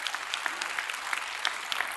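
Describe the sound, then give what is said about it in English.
A church audience applauds during a service with steady, dense clapping from many hands at moderate loudness for about two seconds, with no voices clearly standing out above it. “And let me tell you, just to the glory of God, because I want you to cheer for this too.”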